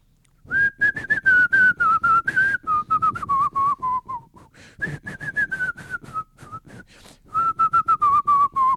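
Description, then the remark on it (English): A person whistles a short, bouncy jingle, a quick version of the Young Utes whistle, the melody rising and dipping in quick phrases with a brief pause midway, loud and clear with no talking over it. “Right, but you got to do a quick version of the whistle.”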